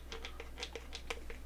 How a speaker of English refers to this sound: This me, like, rubbing the cap against this, like, bottle... Like, that is a form of ASMR.